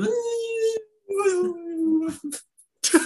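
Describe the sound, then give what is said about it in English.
A man's voice imitates the mating call of a creature called a song beast with two long, wavering howl-like tones, each drawn out for about a second, followed by a brief breathy noise. “They must have a beautiful mating call. I'll let you try to imitate it since you are the natural animal man.”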